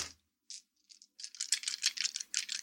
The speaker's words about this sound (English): Sound of the dice.